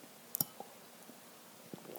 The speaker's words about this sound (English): Just had to take a sip of my water.